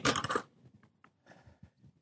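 A bright, jangling metallic clatter of keys being set down, loud for a moment, followed by a few faint settling clinks and quiet handling noises.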